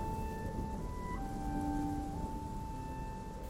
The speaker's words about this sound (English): Below, the waves crashed, the rain poured down, and the sea was in endless motion.